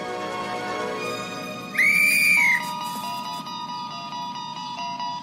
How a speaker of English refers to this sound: And as soon as the mom leaves, she blows this whistle.